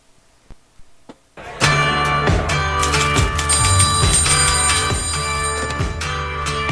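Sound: telephone ringing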